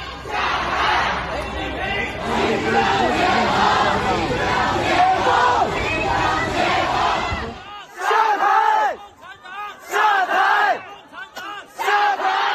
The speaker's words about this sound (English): the headlines of everything is the shouting of down with Xi Jinping and down with the CCP